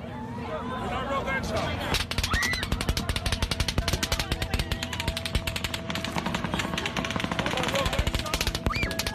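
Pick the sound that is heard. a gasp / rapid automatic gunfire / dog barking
rapid automatic gunfire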